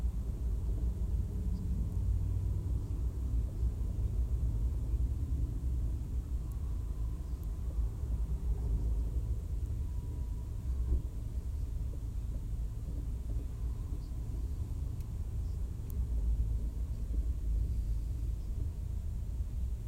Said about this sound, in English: I'm waiting at a train, jeez. Looks like a long one.